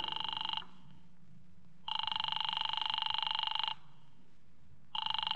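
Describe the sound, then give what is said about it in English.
A telephone rings in long, buzzing bursts, three rings separated by pauses of quiet, steady, with no one picking up and no voices; a call to Diamond's office that goes unanswered. “His office don't answer.”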